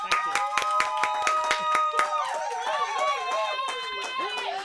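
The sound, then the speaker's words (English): A few people clap in quick, uneven bursts for about two seconds, then the claps thin out as several voices take over with warbling, sliding cheers and chatter. “Come on, control round of applause.”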